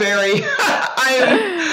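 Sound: dry cough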